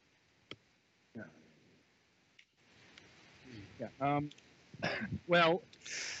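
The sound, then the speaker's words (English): Rough throat clearing and short coughs come in a few separate bursts, faint at first and growing louder and more strained toward the end. “Sorry, I was just coughing up a lung.”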